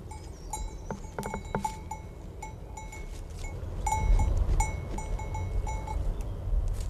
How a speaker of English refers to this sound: And on the grassy slope above it, sheep graze, their bells ringing as they did in the days when Bernadette watched them.